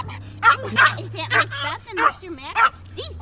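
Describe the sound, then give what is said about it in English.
A 12-year-old Yorkshire Terrier mix yaps and barks repeatedly, about six sharp, high-pitched barks in an uneven rhythm over a low steady hum. “He's a 12-year-old Yorkshire Terrier mix.”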